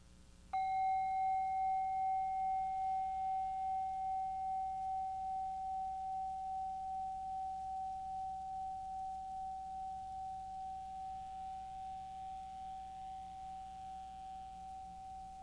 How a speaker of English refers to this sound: When you hear a bell, it'll be the end of this meditation.